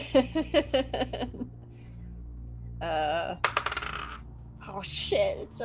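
Yellow dice clatter across a hard tabletop for a persuasion roll in a tabletop game, a quick burst of bright clicks, then a couple more rattling tumbles follow after a pause, with faint voices murmuring underneath.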